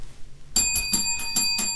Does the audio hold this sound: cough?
no